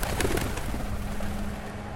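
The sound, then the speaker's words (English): Low, throaty cooing of pigeons around a funeral home rumbles steadily through the short stretch over a dull outdoor background hum. No one is speaking. “One day, me and the kid was hanging out in the alley, and I was looking at pigeons flying around the funeral home.”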